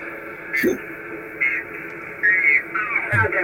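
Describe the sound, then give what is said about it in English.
Steady HF radio static hisses throughout while operating, overlaid by warbling, garbled bursts of a transmitting station, loud and continuous with brief swells of distorted, voice-like sound. “There's a lot of static and noise that you're going to run into with HF.”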